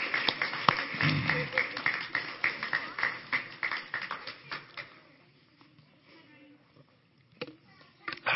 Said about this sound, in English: As our children and teenagers go off the stage, I think they deserve a round of applause for helping me. Thank you, guys. Thank you so much.